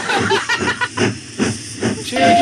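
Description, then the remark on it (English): A steam train chugs with rhythmic hissing puffs of steam, then a steady whistle tone begins at the very end, loud, with no talking. “Choo-choo. Lawson, what are your plugs? I hear the train a coming.”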